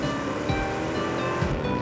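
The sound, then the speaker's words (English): A steady, droning engine rumble as engines run up to the station, with a constant humming tone over a broad roar of noise and no voices. “And about 30 minutes later, you guys hear the sounds of engines running up to the station.”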